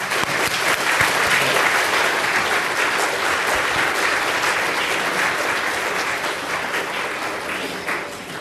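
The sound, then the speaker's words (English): An auditorium audience applauds Professor Maskin after his speech as he leaves, steadily for about eight seconds, a dense, bright patter of many hands clapping at once, holding an even loudness before tapering slightly at the end. No one speaks. “So let's give him another round of applause.”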